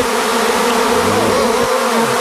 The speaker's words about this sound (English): The bees are swarming. Nice. The bees are swarming. Where's my EpiPen? That scared me.